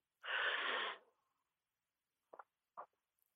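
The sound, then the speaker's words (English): One long, deep breath rushes out during a guided deep-breathing exercise, followed by silence and two brief, soft breathy sounds near the end. No one speaks. “So we'll take some deep breaths together.”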